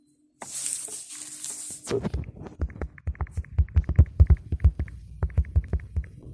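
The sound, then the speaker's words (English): A brief burst of rustling hiss gives way to a quick, uneven series of soft taps and clicks, someone typing on a phone screen to write something down, with no one talking. “So I'm sorry if you hear the typing sound on my phone.”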